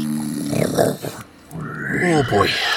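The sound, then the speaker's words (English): A voice imitates the loud, guttural snore of an orc, the leader of an orc camp, heard inside a tent: a rough rumbling inhale, a brief pause, then a rising, raspy snort. Two heavy snoring breaths, grunting and pig-like. “You enter the tent and you just hear this loud snore and what you assume to be the leader of the orc camp.”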